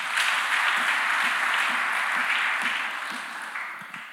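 A crowd applauds for Jesus, steadily, a dense wash of many hands clapping at once, holding strong before tapering slightly toward the end, with no voices over it.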